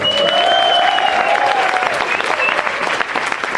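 A loud burst of audience applause for the challenger, Richard Herring, on a show: dense and steady clapping from a large crowd, with a few whoops and a whistle rising above it before it begins to thin slightly.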